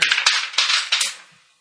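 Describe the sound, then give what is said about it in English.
Two dice clatter across a hard tabletop in a stress roll, a quick run of sharp clicks and rattles over about a second before tumbling to a stop. No one speaks. “Make a 2-dice stress roll and an athletics check.”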